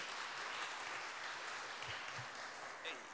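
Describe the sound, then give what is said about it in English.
A round of applause from a crowd: many hands clapping in a dense, continuous wash that holds steady for about three seconds without easing off. “Everyone give her another round of applause.”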